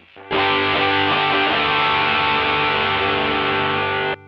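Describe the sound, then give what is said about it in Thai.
An electric guitar through a JHS Moonchild V1 pedal rings out a loud, buzzing, crunchy distorted chord, with a few quick picked strokes at the start before it sustains for about four seconds and cuts off abruptly. “จากนั้นมาที่เสียงแตกที่ทุกคนได้ยินนะครับ ครับ คือตัวนี้”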